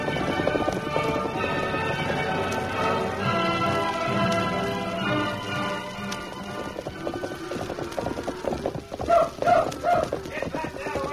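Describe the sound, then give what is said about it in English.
Horse hooves clip-clop in a steady, rhythmic beat as a rider approaches, growing louder toward the end over a dense bed of music and background noise. “There's a rider you heard.”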